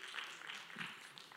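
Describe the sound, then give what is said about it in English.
A thin, faint smattering of audience clapping in response to a point about marriage, a few scattered claps blending into a soft, steady patter for just over a second, with a low murmur underneath. “That was kind of a weak clap.”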